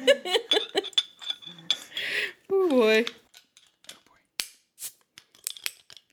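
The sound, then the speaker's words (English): Sharp metallic clicks and clacks from a bottle opener prying caps off beer bottles, scattered irregularly, following a stretch of voices talking and exclaiming. “A lot of clicking and clacking.”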